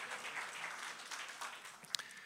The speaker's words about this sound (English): For those of you who are new here, can we give all of our first-time guests a round of applause to say, hey, thanks for coming. We're so glad you're here.